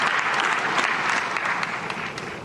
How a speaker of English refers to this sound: Oh, here comes the moment. Oh, clap, clap, clap.